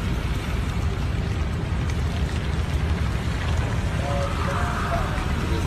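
Steady rain pours down outside in Atlanta, a dense, constant hiss with a heavy low rumble, unbroken throughout. A faint tonal murmur surfaces briefly near the end.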